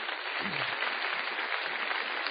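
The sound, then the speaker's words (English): A debate audience breaks into a round of applause in appreciation of the American Clean Skies Foundation, the season's sponsor, a dense, steady wash of many hands clapping at once with no pauses, sustained and fairly loud throughout. “and this season was sponsored and underwritten significantly for us by the American Clean Skies Foundation, and we really want to give our appreciation to them, and I'd like to do that with a round of applause.”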